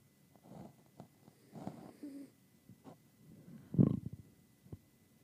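Soft, irregular snoring with low rumbling breaths and small snuffles, broken by one louder snort partway through, with no talking.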